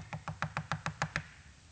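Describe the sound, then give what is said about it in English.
Eight quick, evenly spaced knocks rap on a door in a steady rhythm, close and fairly loud, then stop. No voices accompany them. “I'm knocking at the door.”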